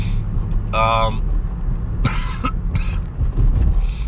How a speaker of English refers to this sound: Do you think I should just cough for the whole episode? Maybe I should do that to film, you know, fill time at this point. I can barely talk. Very congested.